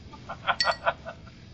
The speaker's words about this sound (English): Sorry, if everyone keeps hearing clinking, it's like 30 degrees in this room, and I have ice water with me. So if you don't like the clinking, you can stop listening now.